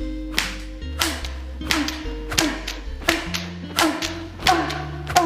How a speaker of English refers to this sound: Placing the razor blade aside, she picks up a leather whip. Marina begins whipping herself.